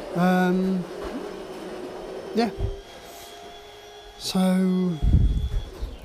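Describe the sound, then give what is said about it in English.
A coffee grinder grinds coffee beans, its motor whirring in two short bursts, a steady buzzing whine that revs up to top speed and cuts off, with rattling, gritty noise and clatter between and after. “So you can hear it there kind of like revving up right to its top speed, because it kind of like, it runs through the beans in a shorter time than it takes to grind it”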